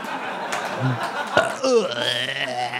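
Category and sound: human body sound, burp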